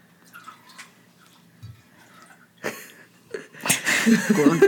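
Alka-Bites medicine being poured from a bottle: a short burst of pouring noise, a pause, then a louder, longer stretch of pouring and rattling toward the end. No one talks.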